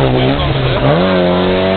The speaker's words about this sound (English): We got a Porsche 944. He's pushing very hard.